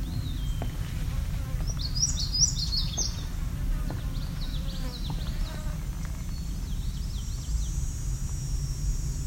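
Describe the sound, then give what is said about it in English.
A brief, partial indigo bunting song: a few high, sweet paired notes clustered early on, over a steady low rumble with faint scattered chirps afterward. “Sounds like probably an indigo bunting here. Just singing a partial song.”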